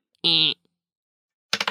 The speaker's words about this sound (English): Oh, rolled the dice off the small area I have to roll on in this closet.